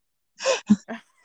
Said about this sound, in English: Okay, so here's what you do. You at three, you start coughing and be like, ugh, I don't know, I don't feel good.